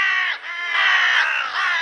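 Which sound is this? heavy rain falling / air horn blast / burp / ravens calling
ravens calling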